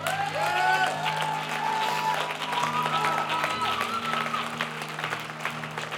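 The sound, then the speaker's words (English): An audience claps steadily in a dense, continuous wash of applause, with a sustained organ or keyboard chord droning underneath and faint voices mixed in. “And all of us who are clapping have done this as well.”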